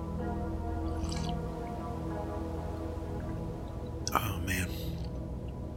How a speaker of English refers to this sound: It's hard to explain, but hold on, let me get a sip of my coffee. I suggest if you have a cup of coffee that you go right ahead and take a sip as well. So hang on.